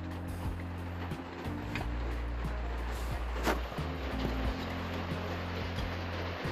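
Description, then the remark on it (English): Steady, dense rain hiss fills the whole stretch, with a low droning hum running beneath it and one brief sharper swell partway through. No one speaks. “But you hear that rain?”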